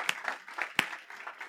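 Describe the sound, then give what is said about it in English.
A group of people clap, asked to give one clap all together: a few scattered, uneven hand claps, then one sharp, louder clap struck together, followed by a couple more stray claps. No one speaks. “No, one clap, we all clap.”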